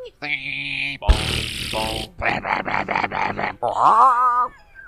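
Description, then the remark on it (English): A voice imitates a dial-up modem handshake: a steady buzzy tone, a burst of harsh static hiss, a run of five rapid pulsing chirps, then a warbling, rising squeal before it cuts off. “And for those of us who were around back in the Stone Ages with that funny little modem noise.”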